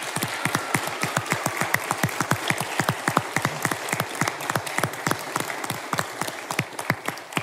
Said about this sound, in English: So anyway, folks, let's just show them our appreciation this morning and applause.